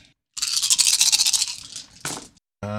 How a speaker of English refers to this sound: Okay, perception and awareness. Yep, just grabbing me dice. Difficulty 7.